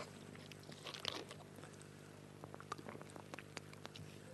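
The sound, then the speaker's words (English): Soft sips and swallows of water, quiet wet mouth clicks and small gulps scattered over a few seconds against a low steady hum, with no talking. “Let me just drink a little bit of water.”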